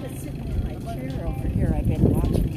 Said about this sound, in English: hold on guys, there's a little truck here coming through. You're not gonna stop right here. Yes, he is. He sure is.